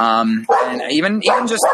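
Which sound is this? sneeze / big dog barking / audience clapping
big dog barking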